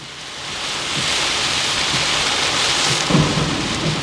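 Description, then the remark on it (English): Heavy rain pours steadily in a dense, hissing wash, with low rumbles of thunder rolling underneath and a brief louder swell near the end. No voices are present. “All right, I've made my point, and now I'm going to drive home and try not to die in this horrible storm.”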